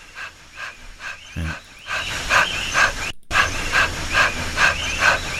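A person does a yoga breathing move, panting rapidly with their tongue out, a quick steady series of breathy, airy huffs that sound much like a dog panting, with a brief pause partway through.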